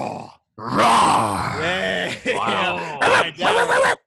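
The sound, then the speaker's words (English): A person imitates a bear with a loud, drawn-out growling groan, followed by several shorter guttural grunts in quick succession, with no words spoken. “Give me your best bear noise.”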